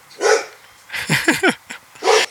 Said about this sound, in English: Hey, this isn't your home. Like, you can't bark, bub. Come on, Rocco.